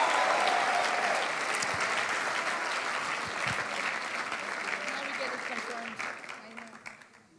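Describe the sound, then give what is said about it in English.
An audience bursts into sustained applause for two Swiss guests after their testimony, a dense, steady wash of many hands clapping together that holds at full strength, then gradually thins and tapers off in the final seconds. “Give our two Swiss friends a big hand clap.”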